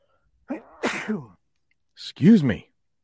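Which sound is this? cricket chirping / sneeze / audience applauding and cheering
sneeze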